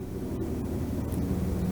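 A steady, low mechanical drone with a faint rhythmic throb, consistent with a helicopter flying overhead, holding at an even moderate loudness with no voices present.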